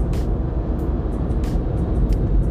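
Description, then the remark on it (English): Steady low rumble of road traffic heard from inside a moving vehicle, with a constant engine and tyre drone and a few brief higher hisses passing by. “going down to one lane, I'm gonna get stuck in traffic at 10:30 in the evening.”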